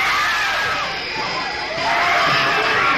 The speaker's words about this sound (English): The screams you are hearing are the actual audience reaction to a sneak preview of Visiting Hours